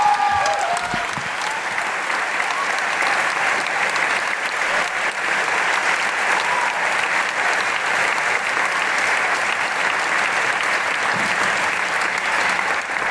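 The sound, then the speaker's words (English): Sustained applause from a large audience welcoming a performer to the stage, a dense, steady wash of clapping that stays loud and even for the whole stretch, with no talking over it. “Big round of applause for incredible lost legend”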